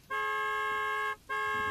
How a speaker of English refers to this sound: My friend flashes her high beams and honks the horn, hoping to scare it off.